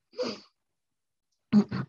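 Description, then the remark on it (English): Someone nearly sneezes and stifles it: a sharp breathy catch, a second of silence, then two short, clipped, muffled bursts. No talking. “I thought I was going to sneeze then.”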